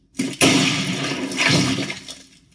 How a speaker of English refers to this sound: That last sound was the sound of the president shooting himself in the head and his gooey bug brains hitting the desktop, if you're wondering.